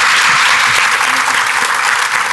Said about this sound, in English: Big round of applause for our panelists, everybody.